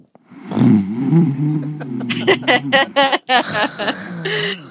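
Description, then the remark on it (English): Someone imitates snoring with their voice: a long, low rumbling drone, then a quick run of short, choppy snorting bursts, fairly loud and with no talking. “I should do my snoring voice.”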